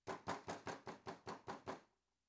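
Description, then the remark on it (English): Eight heavy, evenly spaced bangs in quick succession, made by a fist banging on a door in a firm police-style knock, loud, with nothing else heard. “Where they take the back of their hand, the fist, and they bang on the door. That's a police knock.”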